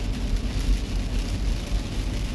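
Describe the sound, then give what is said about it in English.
A car picks up speed along a wet highway, the heavy low engine and road rumble joined by a constant hiss of tires on water, loud throughout. “I'm picking up speed now.”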